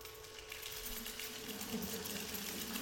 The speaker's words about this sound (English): And very restrained, they shook keys. Anybody who had a key, okay?